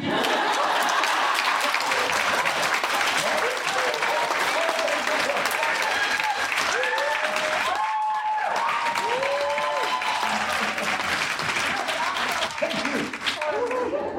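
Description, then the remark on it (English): A large audience claps steadily and loudly for about fourteen seconds, a dense crackling wash of hands with a few cheering voices rising above it midway. “And this is where you applaud.”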